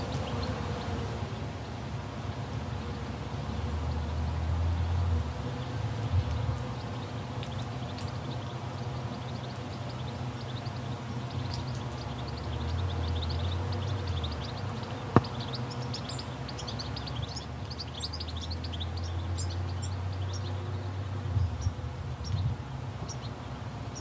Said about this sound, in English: You'll hear three different soundscapes, all from central Otago, New Zealand. First up is the Slapjack Vineyard from Terra Sancta. You can hear several birds singing their songs.